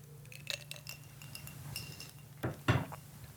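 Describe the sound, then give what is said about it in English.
Someone sips a homemade maple old fashioned cocktail from a glass, with a few light glassy clinks and a louder pair of knocks near the end, over a steady low hum and no talking. “I made myself a maple old fashioned, so I'm going to take a sip of that.”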